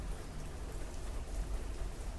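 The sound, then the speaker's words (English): Steady rain falls outside on a porch in a continuous wash of patter, with a dense low rumble underneath and no voices, fairly loud throughout. “Listen to the rain.”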